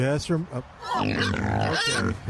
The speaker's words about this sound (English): Oh, It sounded like they poked that pig. Hey, sounds like the wrong end of the pig. Oh.